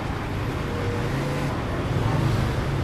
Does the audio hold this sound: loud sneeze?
no